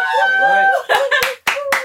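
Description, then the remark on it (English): Several sharp, loud hand claps, about four in an uneven rhythm, clapping because Liverpool won, ring out while a voice whoops and cheers over them. “Why are you clapping, bro?”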